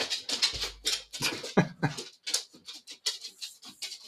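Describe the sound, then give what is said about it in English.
A female dog chews at a squeaky toy, pulling the squeaker out, making a rapid run of short, airy, wheezing squeaks in an uneven rhythm, like a foot pump inflating a mattress. “She's taking the squeak out and it sounds like someone's pumping up an air mattress with a foot pump.”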